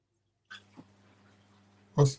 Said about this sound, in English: Cat was going off.